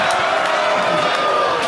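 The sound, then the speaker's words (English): A live audience claps and cheers in a dense, steady wash of applause and crowd noise, loud and continuous throughout the short moment, with a few voices rising out of the din. “Stop clapping.”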